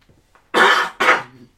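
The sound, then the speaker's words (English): Two harsh, loud coughs in quick succession from a person who is unwell, the first longer and rasping, the second following right after, with no talking. “Sorry, like I said, this is the cough cast.”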